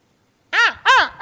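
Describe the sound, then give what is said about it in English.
A blue jay calls out three times in quick succession, each cry loud, harsh and nasal, alone after a moment of silence, the last one cut short. “There's no such thing as a starving blue jay.”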